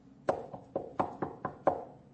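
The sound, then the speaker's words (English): Six firm knocks on what sounds like a wooden door, landing in an uneven rhythm with two quick pairs, moderately loud, with no voices. “The New Testament pictures the Lord standing outside His church in the days of the Laodicean church, knocking on the heart's door.”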